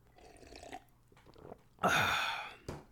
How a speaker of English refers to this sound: Quick sip of water, boss. Don't mind me, boss.